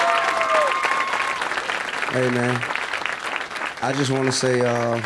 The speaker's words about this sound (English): Well, can we give … a round of applause, please?